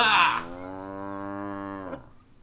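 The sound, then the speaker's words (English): A man imitates a steer with a single long, steady moo lasting nearly two seconds, loud, after a brief breathy onset, ending abruptly. “is doing his best cow impression.”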